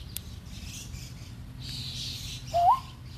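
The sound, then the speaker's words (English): Someone imitates a bird call: a single short, rising whistle near the end, fairly loud, after a stretch of soft breathy hiss and low background noise. “We're now going to make some bird calls.”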